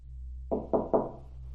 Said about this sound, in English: Oh, here's a knocking indeed.